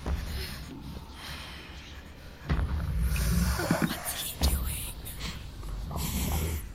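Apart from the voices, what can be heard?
loud sniffing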